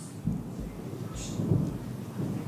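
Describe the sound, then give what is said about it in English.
Low thunder rumbles in rolling swells over a steady wash of rain, with no voices present. “There it is. That was thunder. Did you hear that?”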